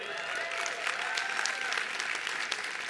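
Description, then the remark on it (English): Steady applause from a large audience for the speaker's wife, marking 42 years of marriage, fills the whole stretch, dense and continuous with scattered sharper claps, without any speech. “Yeah, and all that's applause is for her.”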